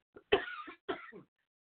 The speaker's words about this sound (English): Excuse me, I couldn't keep that cough, so I'll just say excuse me and move on.